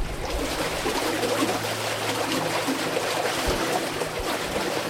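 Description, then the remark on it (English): Steady rush of flowing water in an irrigation canal in California's Imperial Irrigation District, a continuous broad gurgle with no pauses and no voices, holding an even loudness throughout. “The sound of the water is very relaxing.”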